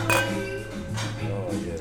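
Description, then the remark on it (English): A quick clink of stemmed, tulip-shaped glasses touching in a toast, a bright ringing tap near the start that fades out, with low background murmur and noise underneath. “Anyway, cheers. That wasn't as good with those clickers in there.”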